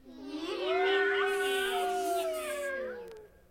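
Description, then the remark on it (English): A voice imitates a Halloween cat prowling in the night: one long, wavering, drawn-out meow lasting about three seconds, its pitch sliding up and down before trailing off. “Make noises like Halloween cats prowling in the night.”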